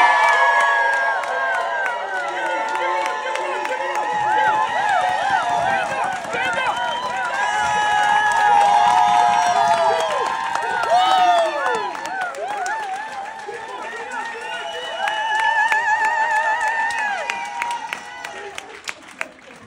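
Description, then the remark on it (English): A large crowd cheers and screams continuously, loud, with high-pitched shrieks and whoops rising over a dense roar that swells and fades across the whole stretch; some people in the distance stand on chairs screaming. “Off in the distance that were standing on chairs screaming.”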